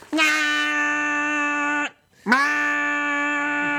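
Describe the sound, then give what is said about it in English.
A voice imitates a car alarm that will not shut off: two long, loud, steady buzzing tones at one nasal pitch, separated by a brief pause, with no talking. “I'm doing a car alarm that will not shut off.”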